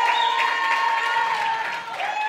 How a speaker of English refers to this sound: Now listen, friend, you're cheering and clapping and everything else. Ascoltate amici, state applaudendo, state facendo tutto il resto. And I'm so glad you are. E sono grato che lo state facendo.